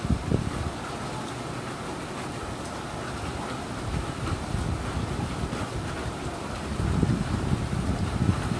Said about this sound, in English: Damn, the wind in the background is making the waves on this thing go high. I can hear it in the background, I'm sure.